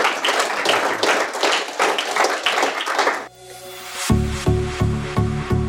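A few seconds of steady, dense applause from a group, many hands clapping at once, then it cuts off and a tonal, rhythmic music piece starts up.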